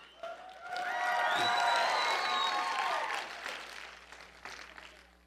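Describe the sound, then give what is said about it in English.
A lukewarm round of audience applause for the Michael Larson Experience, with a few voices cheering over it, swelling quickly, holding for about three seconds, then thinning into scattered claps. “Yeah, and thank you for that mediocre applause.”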